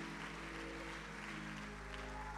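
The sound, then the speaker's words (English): An audience at a conference claps together in thanks to the Fort Myers team, a dense, continuous burst of applause that holds steady for a couple of seconds, with a low sustained tone humming underneath and no voices. “Let's give them a hand clap of thanks for what has been done and what you've received.”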